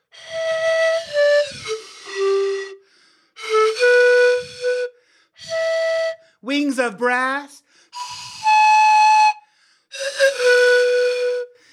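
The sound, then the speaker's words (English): A breathy flute plays a halting tune called Gale of the Thunderbird, held notes separated by short pauses, with a quick warbling flourish in the middle. A voice briefly speaks near the start. “Maybe she'd like a little bit of pee flute over here.”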